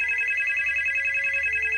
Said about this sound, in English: You get a phone call from your mother.